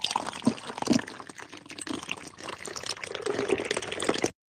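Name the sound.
drink being poured out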